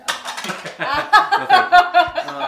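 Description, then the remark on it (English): Dice clatter and rattle across a hard tabletop in a quick run of bright, clicking knocks that settle after a couple of seconds, with faint voices murmuring underneath. “Here, you can use my dice.”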